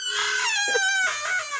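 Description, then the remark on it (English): A door creaks open with a long, high, squealing groan whose pitch wavers up and down for over a second, fairly loud and with no voices over it. “I think I need some oil for the door.”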